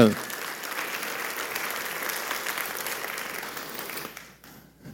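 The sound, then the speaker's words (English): An audience breaks into steady applause, a dense wash of many hands clapping together that holds for about four seconds before tapering off quickly. “Yeah, somebody started to clap. I think we should all clap for that.”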